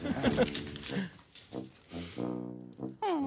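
A dog whimpers and whines in a series of short, pitched cries, ending on a higher, rising whine.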